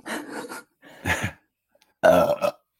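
A run of short, croaky burps in quick bursts, the last one longer with a falling pitch, loud with no talking over them.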